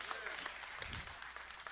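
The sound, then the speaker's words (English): An audience cheers and claps for Jesus in a dense, steady burst of crowd noise, with scattered whoops and sharp handclaps running through the whole short stretch. “Yeah, okay, let's go ahead and cheer Jesus.”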